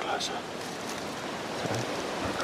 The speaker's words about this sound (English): A wind blows through the trees.